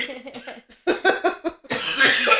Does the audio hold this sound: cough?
yes